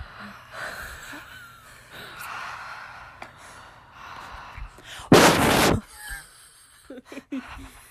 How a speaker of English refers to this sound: Welcome back to us breathing.